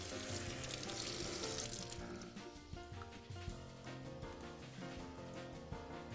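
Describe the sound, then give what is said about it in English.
Warm, bath-temperature tap water runs steadily from a sink into a measuring cup, measuring 2 1/4 cups for a beginner bread recipe: a continuous hissing splash that fills the whole stretch at a fairly even level, with no talking. “So we are gonna go to the sink right now and get 2 1/4 cups of water.”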